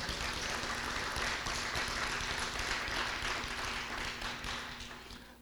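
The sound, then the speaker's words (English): A church audience claps their hands to thank the church's finance department staff, a dense, steady patter of many hands that holds for several seconds before starting to thin and fade toward the end, with a low hum underneath. “Come on, clap your hand.”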